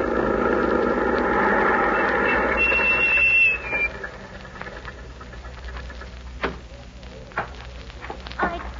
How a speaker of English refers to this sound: They're coming. We'll stay here on this side of the house until the truck stops and they go inside.